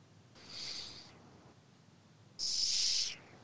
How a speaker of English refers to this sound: The nose whistle.